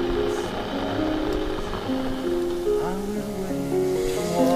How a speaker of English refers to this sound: Standing in the kitchen, waiting for the kettle to boil.